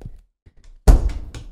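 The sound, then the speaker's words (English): A playing card is slapped down hard on a table, giving one loud, sharp thump, followed by a couple of softer taps as it settles. Before it there is only faint low rumble. “Man, he keeps slapping it down.”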